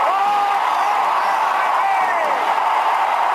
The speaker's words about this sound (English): Willie Mays just brought this crowd to its feet with a catch, which must have been an optical illusion to a lot of people.